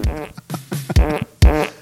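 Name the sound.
fart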